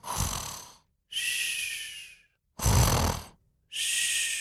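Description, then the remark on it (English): A voice imitates loud snoring coming from a barn on a farm: four drawn-out breaths alternating between a rough, rumbling inhale and a breathy, whistling exhale, steady with short pauses between. “There's a loud snoring noise coming from the barn.”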